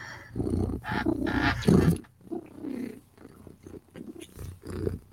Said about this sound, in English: Because if I'm purring, I'm happy.